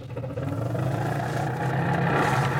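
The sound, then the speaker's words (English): An old car engine runs steadily, a rough, droning rumble with a faint clatter that holds an even loudness throughout, with no voices; the car has not been fixed up. “You know, Rochester, one of the reasons I haven't fixed this car up is that I've been thinking of getting a new one.”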